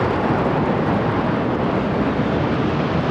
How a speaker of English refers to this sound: The Royal Air Force put on a spectacular display. More than 70 aircraft flew across London, including Apache helicopters, Typhoons, and the Red Arrows.